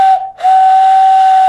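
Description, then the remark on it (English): A person blows a loud, breathy hand whistle that mimics a steam train's whistle, a steady high tone with a brief break near the start, then sustained to the end. “Oh, that's impressive. Just like a train.”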